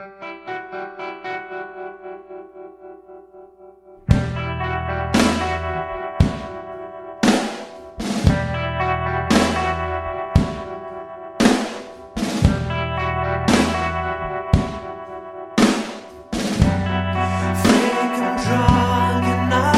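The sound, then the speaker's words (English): An indie rock track opens with a few seconds of soft, sustained chords, then a full band crashes in with heavy, steady accented beats and echo-drenched, effects-laden guitars. No singing is heard. “I guess we should go on to the next track”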